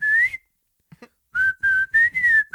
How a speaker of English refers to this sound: That was a really good whistle.